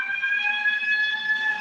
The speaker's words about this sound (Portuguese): Gente, que isso? Alguma coisa na minha rua. Não era uma sirene, não, velho. Não, era uma pessoa gritando.